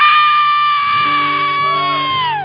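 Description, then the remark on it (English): A person lets out a long, loud roar imitating a lion, held steady for about two seconds before sliding down in pitch, with other voices shouting underneath. “You came to us like a lamb, but God, you roar like a lion now. And out of my belly comes a roar.”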